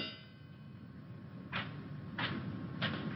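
A rock is set down on a table in a cabin, giving three short, dull knocks spaced at roughly even intervals over a steady low rumble, with no voices.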